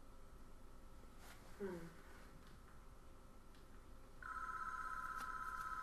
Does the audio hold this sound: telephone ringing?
yes